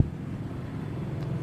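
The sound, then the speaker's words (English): A motorcycle engine rumbles steadily outdoors, a low, continuous droning growl held at an even level for the whole moment, with no voices. “yeah, here it comes, the motorcycle.”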